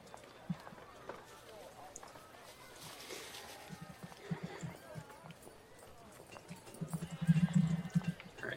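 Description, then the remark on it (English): A riding horse clip-clops along in a steady rhythm of soft hoofbeats, with a neigh rising over a busy, muffled background that grows louder toward the end. “I will procure the riding horse, my deep pockets.”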